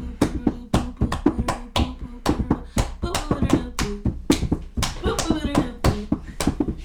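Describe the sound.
Sharp, loud hand claps repeat in a steady, quick rhythm, a few per second, continuing throughout while voices talk and murmur underneath.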